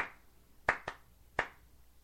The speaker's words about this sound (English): … going to clap?